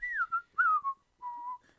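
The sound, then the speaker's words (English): A person whistles a short, lilting tune of three or four gliding notes with brief pauses between them, clear with no talking. “Fire Donkey was pleased with himself, and as he ventured back home, he whistled just a little bit.”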